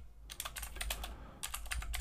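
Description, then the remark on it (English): Rapid typing on a computer keyboard in two quick bursts of clattering keystrokes separated by a short pause, with a low background hum and no talking. “I know you guys love the sound of my typing keyboard.”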